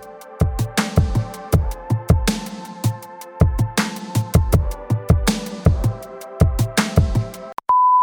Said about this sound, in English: So turn it up and listen to our conversation after the beep.